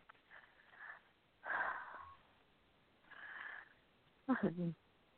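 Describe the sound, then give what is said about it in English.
A few breathy sniffs and inhalations build up, then end in a short, sharp, voiced burst like a sneeze. The sounds are quiet and come alone, with no talking. “We say bless you, bless you, bless you.”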